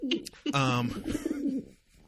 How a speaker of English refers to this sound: There won't be a ding. There will be a pigeon noise every time. A pigeon coup